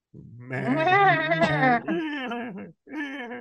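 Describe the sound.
Several people on a sports talk show mimic a goat's bleat together as a shout-out, a loud, quavering 'baa' that wavers in pitch, breaks off briefly, then a second shorter bleat follows.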